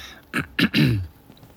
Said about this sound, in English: I tear my eyes away and clear my throat.